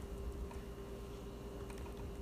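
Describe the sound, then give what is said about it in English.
Soft, quick clicks of someone typing a message on a computer keyboard, irregular taps over a steady low hum, with no one speaking. “Oh, I'm just typing this message.”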